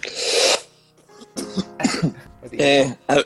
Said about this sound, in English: I really hate this continuous cough that I'm starting to develop.